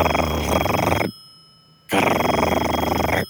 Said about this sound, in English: she called the number, and it rang and rang, and it had one of those rings that doesn't sound like a normal phone ring, like...